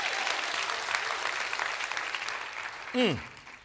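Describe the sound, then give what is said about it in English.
An audience claps their hands in a dense, steady burst of applause, saying amen to the resurrection of Jesus Christ, from start to finish, with a brief falling vocal shout near the end. “Can you clap your hands and say amen to the resurrection of Jesus Christ?”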